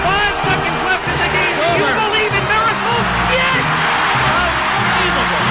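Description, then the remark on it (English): A large standing audience applauds and cheers loudly after a dramatic performance by James Torval and Christopher Dean, a dense, steady roar of clapping mixed with shouts and high whoops that holds constant for several seconds. “They're standing and they're applauding that dramatic performance by James Torval and Christopher Dean.”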